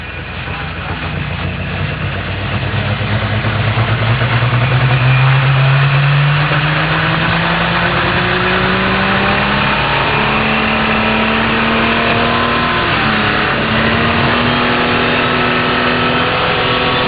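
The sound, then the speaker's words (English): The heavy diesel engine of the superstock pulling tractor Redline Fever, driven by Esden Lane of Dayton, Minnesota, roars loudly and continuously, its pitch climbing in long strained sweeps as it labors under load, with a dense mechanical rumble throughout and no talking. “Legendary driver, legendary tractor in the diesel superstock world.”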